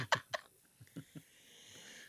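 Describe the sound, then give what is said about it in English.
Two quick, sharp coughs in close succession, distinct, followed by a few soft, muffled low thumps and then a faint hiss of background noise. “I wasn't coughing before I came down here, by the way.”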